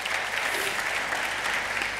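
A crowd applauds steadily, a dense, even wash of many hands clapping at once that holds at a constant, fairly loud level without breaks.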